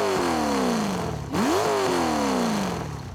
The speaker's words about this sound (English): Skeeter rolled up, revving the dueled-out big block 454 with gas-ported piston rings, flat-tap camshaft, high-rise intake manifold, etc., etc. The thing churned out almost 400 horses and stopped at every gas station.